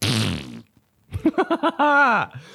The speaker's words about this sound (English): Fart office, bro. I want to make places in public my fart office, but I don't know if that's weird or not to people.